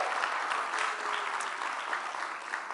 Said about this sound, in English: Could you just raise your hand so we can acknowledge you, say hello, and clap a little? I know we have some visitors right here, so let's all be welcoming to them.